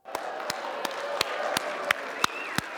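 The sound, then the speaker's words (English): A standing crowd cheering for one another claps in a steady rhythmic beat, eight or so sharp claps, over a constant bed of cheering voices with a few high whoops rising above the noise. “Let's cheer for one another.”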